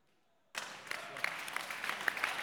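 After a brief near-silence, an audience breaks into loud, dense clapping that starts abruptly and continues steadily as a thick wash of many overlapping hand claps.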